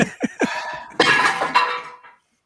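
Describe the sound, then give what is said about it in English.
A cat jumps onto a desk and knocks things about: a few quick knocks, then two loud, crashing clatters with a bright, glassy ring that fades away. No one speaks. “Sorry, the cat has jumped on the desk.”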